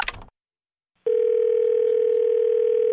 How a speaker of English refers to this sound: These aren't numbers. Those aren't numbers. They're dial tones.